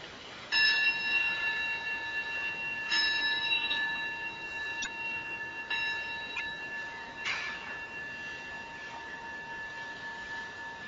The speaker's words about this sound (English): And we'll begin with three rings of the bell, and then an Anjali, and then we'll continue.